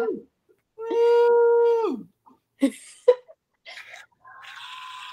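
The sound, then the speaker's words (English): A loud, sustained high-pitched scream of excitement rings out for about a second, followed by a few sharp knocks and shorter, higher squealing bursts. “It's a scream for me.”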